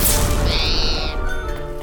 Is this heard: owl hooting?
yes